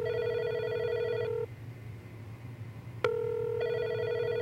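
A reception desk phone on speakerphone rings after extension 103 is dialed: a buzzy electronic ring tone, a pause broken by a sharp click, then the ring resumes. A low steady hum runs underneath, and nobody speaks.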